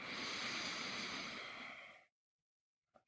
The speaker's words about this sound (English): So just breathing in through the nose. And out through the mouth. Just one more time, breathing in through the nose.